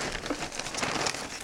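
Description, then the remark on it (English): Continuous dry crinkling and rustling of a paper bag, fairly steady for a second and a half, with no voices. “I thought those paper bags were from Sprouts and I was going to spit in his face.”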